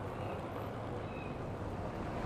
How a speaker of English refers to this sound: There's another car going by. Sorry.